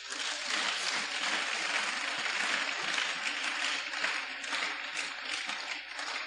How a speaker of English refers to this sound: Praise the Lord. Clap for the Lord.